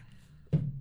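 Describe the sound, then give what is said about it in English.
A single sudden sneeze bursts out about halfway through after a quiet stretch, fairly loud, with a short breathy tail fading afterward. “Bless you.”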